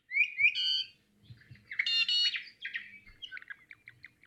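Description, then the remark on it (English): An 'i'iwi honeycreeper gives a series of harsh, metallic, gate-like creaky calls, fairly loud, with buzzy harmonic notes in quick bursts and some fainter chirps trailing off, no voices. “So we have the EEV, and they kind of do this derp, derp, derp, derp, derp.”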